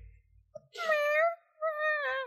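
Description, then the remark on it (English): A person's voice imitates a tiny dragon with a cat-like meow twice in a row: two drawn-out, high, whiny mews, fairly loud, with a short pause between them. “It sounds like a cat.”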